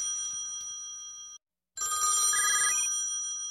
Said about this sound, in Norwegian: Sjefen ringer, den må jeg ta.